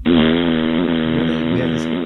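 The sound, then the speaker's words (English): A long, loud real fart, not a sound effect, rasps steadily for about two seconds, a buzzy, low-pitched drone with no pauses and no voices over it. “That has to be in the prelim talk, the farts.”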